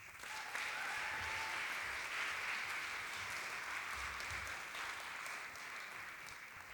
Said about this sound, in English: Let's give these guys a cheer too.